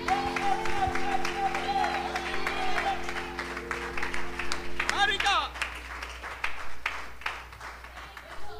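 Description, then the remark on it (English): An audience claps their hands one more time before being seated, in steady, dense applause for several seconds. A sustained musical chord plays beneath for the first half, then cuts out, leaving the loud clapping on its own. “Can you clap your hands one more time before you're seated?”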